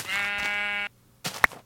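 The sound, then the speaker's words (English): A video game sheep lets out one loud, buzzy bleat lasting nearly a second, followed after a short pause by a couple of quick, sharp clicking sounds. “Why don't you grab that sheep? Remember, bring up your shears and right-click on them, and I'll take out the pig.”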